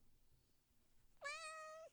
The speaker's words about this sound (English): Give us a meow. We're not leaving till you meow.